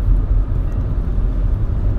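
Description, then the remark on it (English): A steady, loud low-frequency rumble fills the whole stretch, the continuous drone of road noise heard from inside a car driving at speed from Sedona, Arizona, down to Phoenix, with no voices. “And perhaps more than anything else today, we desired to attempt this channeling performance while driving a car from Sedona, Arizona, down to Phoenix.”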